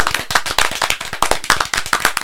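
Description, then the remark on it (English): A short applause sound effect: many sharp, crackly claps overlapping in a dense, irregular patter, steady in loudness for a couple of seconds, with no voices. “I think it was supposed to be applause.”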